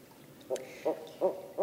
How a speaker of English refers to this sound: Yeah, they're talking now. These are barred owl families. The babies make very high-pitched squeals as they talk to their parents, and I think they're saying, "I want those mice! Get me my mice!"